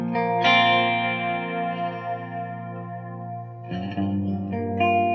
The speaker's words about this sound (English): It's a smear delay. It might well be a pattern delay. Yeah, it's a pattern. So the delay is in a set pattern that they've already chosen. But then the delay repeats smeared together like a reverb, so they mash together.